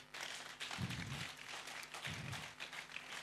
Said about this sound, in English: But I want to appreciate Pastor. Please clap for him.